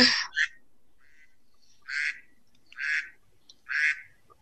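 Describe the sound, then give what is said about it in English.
A duck quacks several times in a steady rhythm, about once a second, each call a short nasal burst, clear with quiet pauses in between and no voices. “Oh, that reminds me of feeding ducks with the breadcrumbs.”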